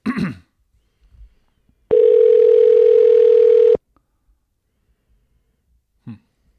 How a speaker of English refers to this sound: But usually it'll tell you, this phone cannot accept incoming calls. Seems like that would have happened. Yeah, I think it's ringing.